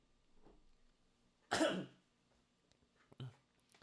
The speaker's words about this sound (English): Guys, sorry, I keep coughing. Drink more water. Bro. Gotta embrace the cough.